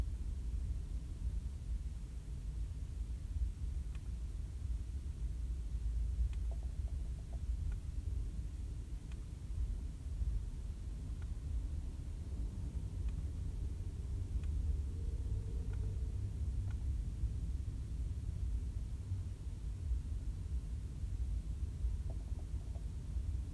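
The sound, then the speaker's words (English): A steady, low rumble of road traffic fills the scene, continuous and fairly loud, with faint clicks and brief higher sounds scattered over it and no talking. “Traffic's only getting worse.”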